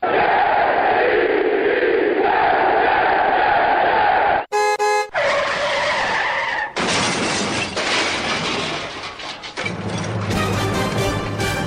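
A car crash sound effect: a sharp horn blast cuts through a rushing roar, followed by loud crunching impact and clattering, shattering debris that keeps rattling for several seconds, with no talking.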